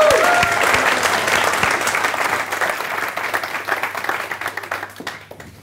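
A big audience bursts into loud, dense applause that holds steady for several seconds, then slowly thins into scattered individual claps as it fades out.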